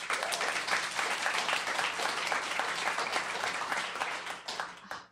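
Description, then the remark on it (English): A live audience breaks into sustained applause, many hands clapping densely and steadily for about five seconds before it tapers off at the end. It sounds full. “Clap or not clap?”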